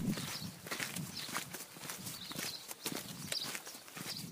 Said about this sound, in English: During the podcast, you'll hear a few sounds that we recorded along the way, including footsteps, a bit of a stream, a recording of singing in the cathedral, as well as interviews with two pilgrims.